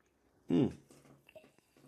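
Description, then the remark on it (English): A single short, wet sip of a drink, followed by faint swallowing and soft mouth noises against an otherwise quiet background. “I need to take a sip.”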